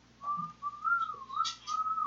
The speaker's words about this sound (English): So, I didn't know how to whistle that soft.